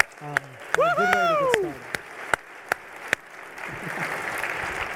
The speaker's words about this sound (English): So I think that's something to stand and clap about for yourself and your families.